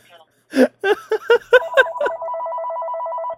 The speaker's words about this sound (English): My phone's ringing. Do you have a home phone, or is that just your phone? We still have a home phone.